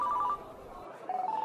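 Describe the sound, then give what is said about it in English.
A mobile phone rings with a bright electronic tone, two short melodic bursts separated by a brief pause, clear and distinct. “That's Joe's phone. Should I answer it?”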